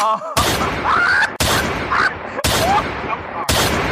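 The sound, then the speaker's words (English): A gunshot sound effect: four loud, harsh gunshot-like blasts go off about a second apart, each bursting in sharply and trailing into a rough, noisy tail. “I need to edit in the gunshot sound effect right there.”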